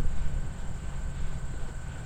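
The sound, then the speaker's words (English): A small wind turbine named Gust, at the end of a bridge by the lake in Milwaukee, spinning close up: a steady, brushing whoosh over a low rumble, with thin high-pitched whines held throughout. No one speaks. “This is what Gust sounds like close up.”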